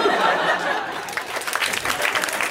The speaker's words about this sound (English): We will show him that by clapping, which is the only sound we can make communally.